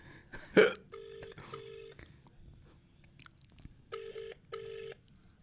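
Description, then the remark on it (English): A phone's ringback tone plays over a tinny loudspeaker in two double-burst pairs with a pause between, after a short rustle or crunch at the start. “There's a lot of you just ringing.”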